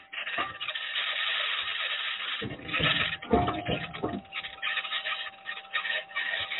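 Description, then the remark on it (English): The Perseverance rover's aluminum wheels grind and crunch over rocks while driving on the surface of Mars on Sol 16, in uneven scraping rasps, heaviest in a burst midway, with a steady hum from the rover's electronics droning underneath throughout. No voices. “All those interesting noises are rocks that the wheels, the aluminum wheels, are encountering.”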